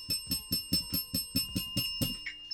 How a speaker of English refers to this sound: I'm going to hit the bell on this a couple times.